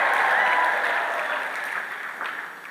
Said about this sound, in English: Can I get a scream in the house now? Will you clap your hands and shout? Will you shout right now? Will you scream now? Will you give God your word and scream?